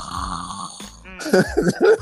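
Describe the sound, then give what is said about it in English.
A voice imitates snoring, a drawn-out rasping inhale followed by a rough, vibrating snort, loud and exaggerated, with no other talking. “I'd be wide the fucking awake, but I'd start snoring like...”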